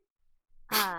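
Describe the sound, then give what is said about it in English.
After a near-silent moment, a woman lets out a single sudden, loud sneeze, a sharp breathy blast with a voiced edge that cuts off abruptly. “Did you hear her sneeze?”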